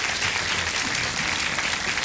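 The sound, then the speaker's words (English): Steady applause from an audience for a film's maker and his family, a dense wash of many hands clapping at once that holds an even, fairly loud level for the whole two seconds with no voices standing out. “It's a fun, thought-provoking, challenging film, and I really want to applaud you and your family for making this.”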